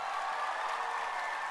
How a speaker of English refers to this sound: And point number five, his return, dun dun dun dun, will forever defeat Satan. Come on, can we clap to that?